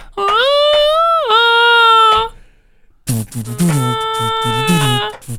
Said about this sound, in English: It could have come from an alpha male coyote calling its pack.